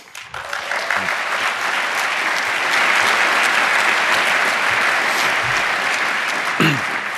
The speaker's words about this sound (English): So please set the stage with a huge applause.